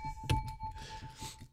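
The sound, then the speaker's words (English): A bell being handled and put next to a microphone: a sharp knock sets off a steady, high ringing tone that hangs on while rattling, jingly clatter from moving it continues underneath. No one speaks. “Hey, I got this bell here and I don't know where to put it.”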